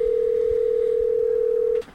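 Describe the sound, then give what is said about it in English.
A single sustained burst of an outgoing phone call's ringing tone, a steady electronic hum lasting nearly two seconds before cutting off, clear, with no one talking. “Well, he does now. The phone rings.”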